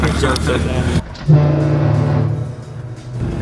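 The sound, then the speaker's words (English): A loud, blaring horn blaster air horn echoes down a tunnel in one sustained, low, brassy blast lasting a couple of seconds, preceded by a burst of rough background noise and a brief lull. “Horn blaster, shocker.”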